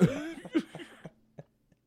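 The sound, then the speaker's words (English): A cough erupts, a harsh rasping burst followed by a few smaller hacking coughs that trail off into quiet, with faint throaty catches near the end. “Yeah, I mean, but I got this cough that I really need to go get looked at.”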